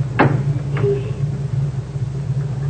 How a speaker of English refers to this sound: Unlatch your door for Croker.